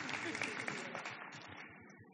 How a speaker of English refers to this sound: We can clap.